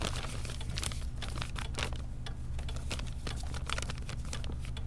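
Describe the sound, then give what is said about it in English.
Continuous crinkling and rustling of crumpled paper forms being unfolded and handled, with sharp irregular crackles throughout over a low steady hum; no one speaks. “Look at these forms.”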